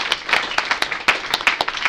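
A crowd applauds steadily, many hands clapping in a dense, irregular patter of sharp bright claps with no voices over it.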